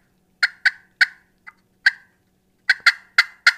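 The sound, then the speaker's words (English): A turkey call imitates a hen with sharp cuts and yelps: about nine loud, clipped notes in an uneven burst, a short pause, then a quicker run at the end. “I'll hit him with a cut, yelp, and then”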